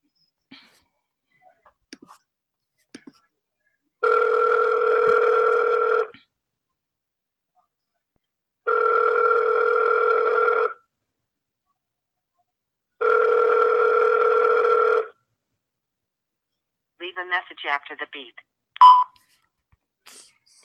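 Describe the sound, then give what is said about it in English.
A few faint clicks of telephone dialing, then three steady two-second ringing tones separated by pauses, followed by a brief burst of warbling electronic beeps at the end. “You wanna call her?”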